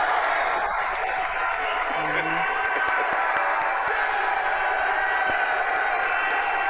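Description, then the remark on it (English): A large crowd cheers and applauds at the draft in a steady, loud roar that fills the whole stretch, with a dense wash of clapping and shouting and no clear pauses, as a Make-A-Wish kid hypes up the crowd before announcing the New York Giants' first pick. “Man, he's hyping up the crowd more than Derek Carr.”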